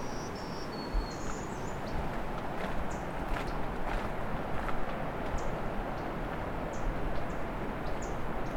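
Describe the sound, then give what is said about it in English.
A myrtle warbler gives a series of sharp, dry tick calls at irregular intervals, fairly faint against a steady hiss of outdoor background noise. “Here's some ticking from a myrtle warbler.”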